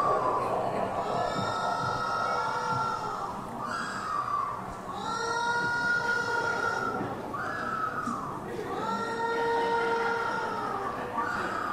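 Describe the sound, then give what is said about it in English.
A bird from the colony at Birch Aquarium gives its vocal display call, standing upright with wings back and mouth wide open: a loud, harsh, wailing cry repeated about five times in a steady series, each call rich and reedy with a slight falling bend, and no voices. “He's got his wings back and his mouth is wide open. This is what he's making, this noise right here.”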